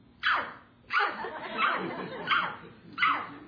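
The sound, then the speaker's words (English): A person, told to bark like a dog, mimics a big dog with five loud, gruff barks in a steady rhythm, each a short burst, with no real dog present. “Bark like a dog.”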